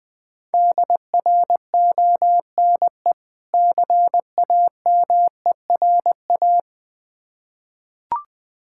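Morse code beeps at 20 words per minute, a steady, fairly quick pace: one mid-high pitched tone keyed into short dots and longer dashes in clustered groups, followed by silence and a single brief click.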